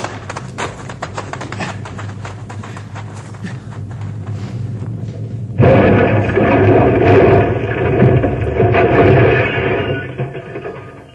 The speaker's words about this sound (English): And rock came rolling down the mountainside and hit our car and flattened it.